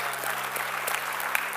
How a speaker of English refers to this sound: Let's clap our hands for these today.